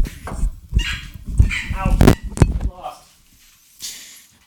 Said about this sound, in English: Hold on, let me get the dogs out of here.